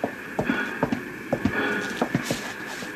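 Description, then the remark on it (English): Hooves of Jesse James's black horse clip-clop in a steady, uneven rhythm, about a dozen hoof strikes over a constant background hiss. No one speaks. “That's James on the black horse, see?”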